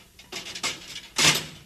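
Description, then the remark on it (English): A heavy metal cell door swings shut as a man closes it behind him from inside the cell: a short run of rattling, clanking mechanical noises, then a louder metallic slam or latch as it closes, with no voices. “Go in and close the door behind you.”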